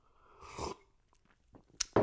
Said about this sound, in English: Let me get a little sip of my coffee here.